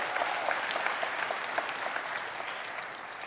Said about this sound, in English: Give the Lord a big hand clap for that. That's awesome.